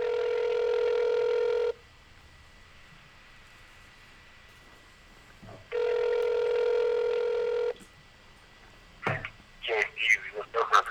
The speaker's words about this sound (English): Wonder if we can get Micah Bam Bam White on the phone. Let's give him a try.